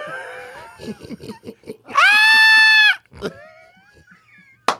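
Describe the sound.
A voice imitates a piercing, high-pitched scream of fright, one sustained shriek about a second long, loud. Brief murmured vocal sounds come before and after it.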